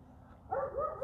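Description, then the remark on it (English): A dog barks, a quick run of three short, tonal barks over a low background hum, with no voices. “Even that dog's bark is perfect, even if there's a part of me that doesn't want it to be barking.”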